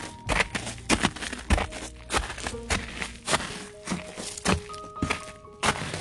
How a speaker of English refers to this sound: And there's snow. Do you guys hear the crunching of the snow? I don't know if you can hear this crunchy noise.